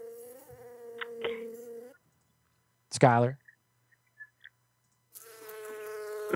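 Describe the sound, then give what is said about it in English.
A steady insect buzz like a bee drones for two seconds, stops while someone briefly calls out, then returns loudly near the end. “It's fine if you're scared of bees.”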